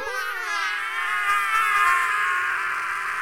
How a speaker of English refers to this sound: Well, my power is a super shriek. Super shriek? Super shriek. Check this out.